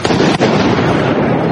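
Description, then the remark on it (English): Fireworks set off by protesters in downtown Washington, D.C., crackle loudly and almost without pause, a dense, steady burst of noise that drops out for an instant partway through, with faint crowd voices mixed in. “And those are fireworks so being used by the protesters.”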